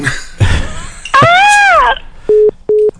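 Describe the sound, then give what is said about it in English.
Two short, steady electronic beeps of a phone line tone after a caller's phone line went dead during a radio call-in, clear, following a brief rustle and a drawn-out groaning voice. “I don't know what's going on with the phone lines, guys”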